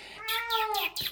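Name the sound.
cat meowing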